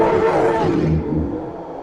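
A loud, sustained bear roar, deep and growling with rough harmonic texture, lasting almost two seconds before easing off slightly in brightness, with no speech.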